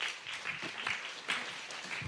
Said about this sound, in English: I don't think he could hear that clap from England. It's good.